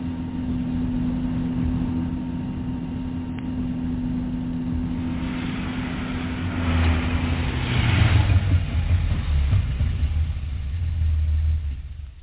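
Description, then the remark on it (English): A car engine runs steadily with a low idling rumble as the car reaches Elm Hall, then swells briefly as if revving or moving before settling again, continuous throughout with no voices. “Well, don't just sit in the car”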